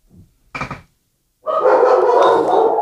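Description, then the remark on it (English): Dogs, including one named Splinter, bark excitedly, starting with a short yip and a sharp bark, then breaking into a loud, sustained burst of overlapping barking and yapping. “The dogs love the question.”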